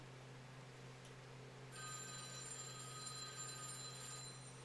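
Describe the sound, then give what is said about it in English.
After a second or two of low background hum, a telephone starts ringing with a bright, sustained electronic tone that continues steadily to the end. No one speaks. “Pick up the phone.”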